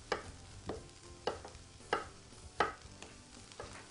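A knife roughly chops a steamed potato into about half-inch pieces for bread, on a board, in seven soft, evenly spaced thuds, roughly one every two-thirds of a second, with no talking.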